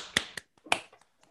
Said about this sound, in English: An easy way to do that is to clap your hands quickly 10 times so that you increase the sensations inside the hand.